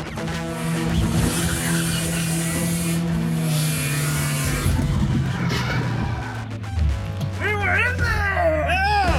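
A loud, steady car engine drones with a low harmonic rumble and gritty rasp, followed near the end by a burst of rapid high-pitched squealing chirps.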